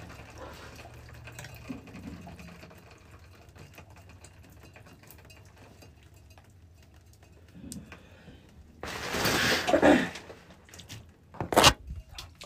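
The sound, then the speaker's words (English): Hot shower water sprays in a loud hiss for about a second, then a shorter splash follows, after a stretch of faint background noise and light clicks. No one speaks. “I love everything about a hot, steamy shower.”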